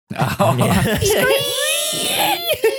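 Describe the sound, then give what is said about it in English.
A crab's whining as it cooks: a loud, high, wavering whine with sliding, crying-like pitch, following a short burst of choppy, voice-like sputtering and ending in a few breathy catches. “And in this space, you hear it do that whining thing that crabs do when they're getting cooked.”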